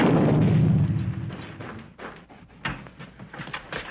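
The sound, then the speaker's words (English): A dynamite cake, baked with the fuses left in the dynamite, explodes: a loud, deep explosion booms at once and rumbles away over a couple of seconds, followed by scattered crackling pops and clattering thuds like falling debris. “The only trouble is he forgot to take the fuses out of the dynamite.”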